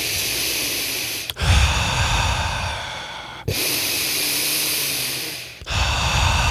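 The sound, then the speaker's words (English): Loud circular breathing, an intentional breath with no pauses, in a continuous cycle, deep inhales flowing straight into forceful exhales with no gaps, about four breaths in a steady rhythm, with no speech. “So circular breathing is a circular breath, an intentional breath with no pauses.”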